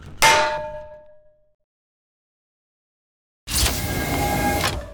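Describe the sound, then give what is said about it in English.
A frying pan strikes a head with one loud metallic clang that rings out and fades over about a second. After a silence comes a steady, noisy mechanical whirring. “I think you accidentally hit me in the head with a frying pan.”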